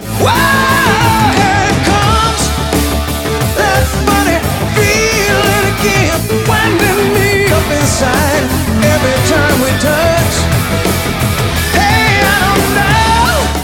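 Loud, dense rock music in which an electric guitar screams out in high, bending squeals that rise and slide over heavy drums and bass, repeating across the passage.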